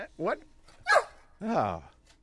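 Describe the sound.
Three short, strained barking yelps, fairly loud, spaced about half a second apart, with the last one drawn out longer; a human voice appears to be imitating a dog.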